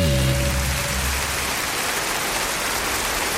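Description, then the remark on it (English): An applause sound effect: a steady, dense wash of crackling patter that sounds like rainfall continues throughout. A low tonal hum sits underneath for the first second before fading away. No one speaks. “Sounds like rain. Do you know what? There's supposed to be applause.”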